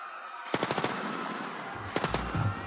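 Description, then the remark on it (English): Rapid automatic gunfire fired into a crowd crackles in two bursts, five or six sharp shots, a pause, then three or four more, followed by a low rumbling thud at the end. “The students were all throwing rocks at the vehicle as it went by, and then the guy was firing into the crowd, and people just started to stampede, of course.”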